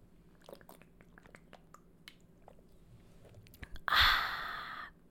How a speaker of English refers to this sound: And something I have to do right now is take a quick sip break. So hold on a sec.